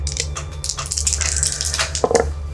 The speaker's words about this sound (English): Go ahead and roll me 3 dice.